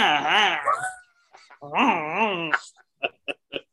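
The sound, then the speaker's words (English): A person's voice does two long, wavering cartoon wolf howls, followed by a quick run of four short, sharp sounds. “he was like Rex the wolf, like whatever that wolf, like the foot tapping and they're like”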